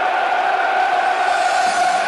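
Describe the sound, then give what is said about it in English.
A steady, dense murmur of a sellout stadium crowd filling up before a Millwall match, a continuous wash of many indistinct voices with no single speaker standing out. “Crowd is filling up, it's a sellout.”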